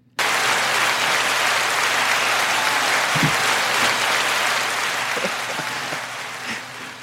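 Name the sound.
applause sound effect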